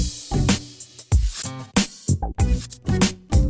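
Buzzing insect drone, like a mosquito, pulses in and out in several short bursts, loud, with sharp clicks and thumps breaking up the whine.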